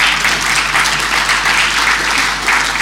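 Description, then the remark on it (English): An audience applauds when a sign reading Kane Williamson is put up, in a steady, dense wash of clapping that holds at an even, fairly loud level for a few seconds without pause or speech. “And as part of that, I'd like you to support me by, when I put up the sign Kane Williamson, I'd like a round of applause.”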